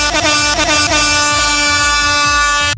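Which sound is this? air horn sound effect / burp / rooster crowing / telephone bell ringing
air horn sound effect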